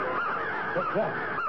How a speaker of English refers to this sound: It sounds like the voices and wings of many birds. There are thousands of them. Flying straight toward us, toward our heads. Well, what are they? Crows, ravens? Blackbirds of some kind. They're coming in a straight line right at me.